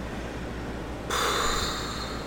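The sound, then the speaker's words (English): Partway in, a voice blows out a steady, breathy whoosh that imitates wind. It holds at an even, moderate level to the end, with no talking. “Yeah, that's the sound of wind.”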